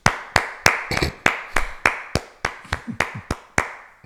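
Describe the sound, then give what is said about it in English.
A lone pair of hands clapping in a steady rhythm, about a dozen sharp, loud claps over four seconds, with no other voices or crowd joining in. “I'm gonna start with a round of applause.”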